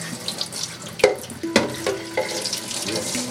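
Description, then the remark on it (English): A tap runs steadily into a sink in a bathroom shared by nine people, a broad hiss of flowing water, punctuated by a few sharp clinks and knocks partway through. “So you're showing me the bathroom for nine people?”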